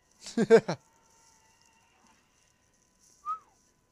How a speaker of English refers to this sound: Sorry if that whistle was loud.